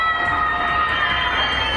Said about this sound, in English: And screaming from their apartments.